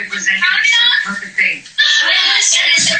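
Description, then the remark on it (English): A group of girls shriek and squeal together in loud, high-pitched, overlapping bursts, with a brief dip before the screaming surges again, continuous throughout. “God, who is screaming? What a classy bunch of girls.”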